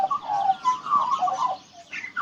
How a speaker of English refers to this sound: Magpies are one of the most common birds in Australia, and they're found pretty much everywhere. But they can sound a bit different depending on where they live. It's like they have accents, just like we do.